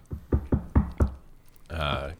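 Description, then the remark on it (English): A series of five firm, evenly spaced knocks on a door, fairly loud, followed after a short pause by a brief voiced sound. “So, despite it being about 20 minutes before anyone should show up, there's another knock at the door.”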